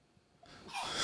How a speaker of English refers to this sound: Gesundheit. I'm so sorry. I got the sneezles.